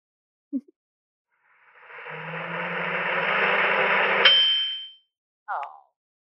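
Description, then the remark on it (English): A microwave, played as a sound to guess in a game, hums and whirs steadily for a few seconds after a click, then falls silent and gives a single short electronic beep. No one speaks. “Microwave.”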